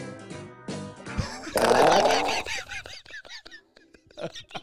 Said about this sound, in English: And then hear the fart.